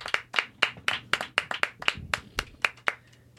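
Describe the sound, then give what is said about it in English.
Audience applause at the Chuckle Hut for comic Todd Glass: a dozen or so crisp, separate hand claps in a fairly steady rhythm, moderately loud and then tapering off at the end, with no talking over them. “Please keep it going for the very funny.”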